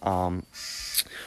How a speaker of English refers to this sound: Sorry, there's a bird making noises behind me.